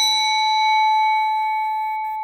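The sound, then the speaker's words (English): A single bell sound effect strike rings out clearly with a bright metallic tone, sustaining steadily and slowly fading over about two seconds, with no talking. “Was that a bell, Ken? Yes, that's just the you mentioned Daniel Kahneman again bell.”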